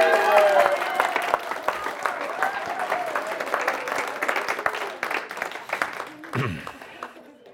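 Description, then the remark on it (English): An audience bursts into sustained applause at the end of Act 2 of a staged presentation, dense clapping with scattered voices and cheers mixed in before it begins to thin out near the end. “And the crowd breaks out in applause.”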